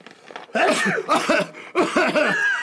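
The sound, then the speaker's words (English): A few loud sneeze-like bursts from a person, each breaking out sharply with a voiced, breathy edge, coming in quick succession over about two seconds. “Yeah, they won't notice you sneeze.”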